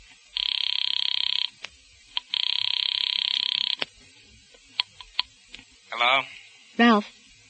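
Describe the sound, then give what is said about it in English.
A telephone rings twice in long, steady electronic bursts, loud, followed by a few sharp clicks and two short warbling, croaky sweeps. “Look, I know how to use the phone.”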